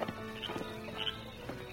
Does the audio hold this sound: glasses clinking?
no